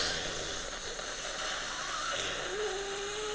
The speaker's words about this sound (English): It's like a hissing kind of sound, and the steam itself makes a bottom of the milkshake kind of sound